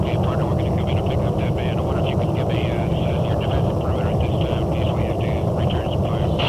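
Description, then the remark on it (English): Loud, steady rotor noise of a medevac helicopter performing a hot hoist fills the whole stretch, a dense low roar with a constant engine whine above it and muffled voices faintly underneath. “This procedure is called a hot hoist, and it is the most dangerous mission you can perform as a medevac helicopter because you're so vulnerable.”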